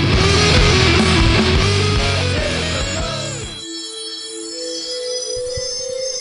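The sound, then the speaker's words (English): Trippy electronic intro music for a show about what people believe in, with dense, bell-like ringing tones and descending sweeps, loud and layered, then thinning after a few seconds into sustained, wavering high drones. No one speaks. “And when you hear the trippy music, you know what time it is.”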